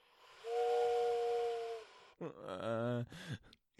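A thin, breathy whistle held for about a second and a half over airy hiss, followed by a low, drawn-out human moan that rises and falls before trailing off.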